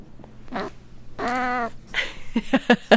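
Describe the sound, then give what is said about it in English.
A female cat of about 20 years lets out a low, drawn-out moan: a short cry, then a longer wavering one, followed by a few sharp clattering bursts near the end. “It's like a moan from her.”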